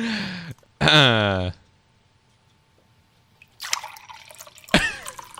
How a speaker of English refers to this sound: The sound of pouring Flair.